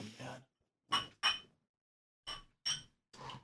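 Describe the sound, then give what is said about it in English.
Glasses of Dark Star clink together in a toast, several bright ringing taps in two quick clusters, fairly loud, with a brief murmur of voice at the start. “I'm gonna cheers, guys. Yeah, yep, absolutely. Cheers.”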